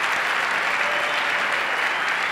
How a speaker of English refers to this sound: Give Kobe a round of applause, guys.